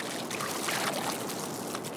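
A steady rush of the McCloud River, a tributary feeding Shasta Dam, flowing over a small, clean gravel bed, continuous burbling and splashing at an even level throughout, with no voices.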